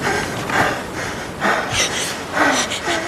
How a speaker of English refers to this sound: She's breathing too. We got a little dual breathing.